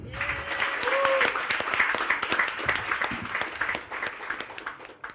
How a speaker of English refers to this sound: If I can get a little bit of audience participation as well, can I have a round of applause, please, once more, for Jonathan Miller?